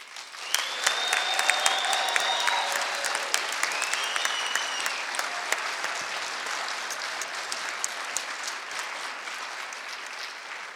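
Sustained, dense audience applause fills the whole stretch, a steady roar of many hands clapping at high volume, with a few faint whistles rising over it early on, as the audience applauds loudly to show that Jesus is the most important person at Christmas.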